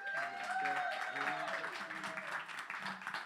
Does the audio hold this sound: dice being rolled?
no